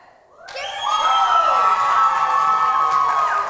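A crowd breaks into loud, sustained cheering and high-pitched whooping that swells quickly after a brief quiet start and holds steady for several seconds.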